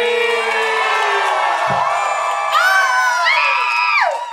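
An audience cheers and whoops steadily for about four seconds as a performer is welcomed to the microphone, a loud wash of many voices with high, rising shouts near the end before it cuts off.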